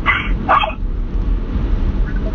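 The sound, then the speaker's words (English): A 3-pound teacup Yorkie lets out two quick, high-pitched yappy barks, then falls quiet over a low background rumble. “Yeah, the dog. The 3-pound guard dog.”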